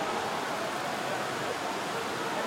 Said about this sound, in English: And we'll have another throw in as the rain continues to tumble.